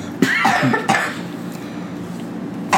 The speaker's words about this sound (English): Hang on, I have to cough.